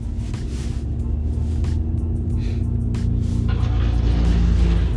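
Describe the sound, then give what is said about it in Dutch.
A large truck approaching by a railway track rumbles steadily, its deep low engine drone building slightly louder toward the end, with faint road noise and brief higher hiss bursts over it. “Nee, ik wacht al even, want er komt een grote vrachtwagen aan.”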